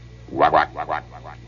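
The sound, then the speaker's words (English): A man's voice imitates a frog's croak using an echo chamber, a quick double croak followed by two fading echoes of it, each repeat quieter than the last. “That's a hell of a frog.”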